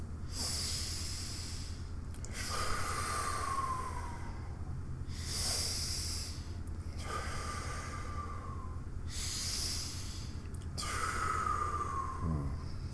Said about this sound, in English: We're going to take 3 deep breaths. Take 3 deep breaths.